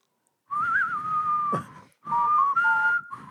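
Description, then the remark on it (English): Someone whistles a spaghetti western theme tune in two short, wavering phrases separated by a brief pause, fairly loud, with no talking. “I'm not really good at whistling.”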